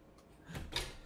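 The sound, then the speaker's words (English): A few knocks on a wooden surface, three short hollow raps spaced unevenly within a second, with the last one the sharpest and loudest. No voices are heard. “I'm gonna keep knocking on wood over here.”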